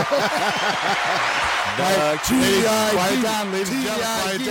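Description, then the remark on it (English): A fake crowd noise sound effect played from a soundboard: a loud, chaotic crowd roars continuously, many voices shouting and chattering over one another with bursts of laughter and cheering, dense and unbroken for the whole stretch. “I hope you at least loaded some fake crowd noise into the soundboard.”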